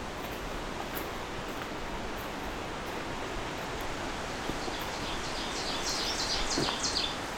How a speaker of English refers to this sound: There he is singing, the oven bird who was ticking at him.